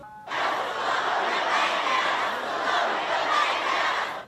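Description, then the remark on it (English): A large crowd in Lebanon cheers and shouts at the appearance of Hezbollah's leader, Hassan Nasrallah, in a dense, sustained roar that holds loud and steady for about four seconds, with voices blending into a continuous wash of noise. “In Lebanon, crowds cheered the appearance of Hezbollah's leader.”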